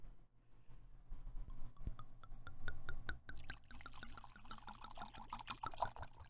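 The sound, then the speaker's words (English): Wine pours into a glass, starting with a quickening run of glugs and drips that swells into a steady, splashy stream. No one speaks. “Pour the wine.”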